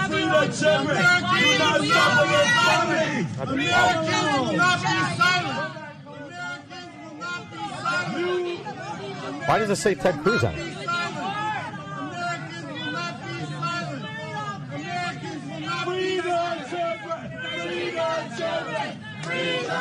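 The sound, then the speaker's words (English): A crowd screams and shouts in a dense, overlapping din, loudest for the first few seconds and then settling into steady, slightly softer babble, with a single voice speaking over it. “Apparently, it's just a bunch of screaming.”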